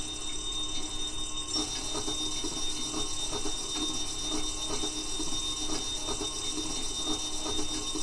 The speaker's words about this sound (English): Gotham Merchants Bank. Oh, yeah, okay. That security bell is a bit annoying.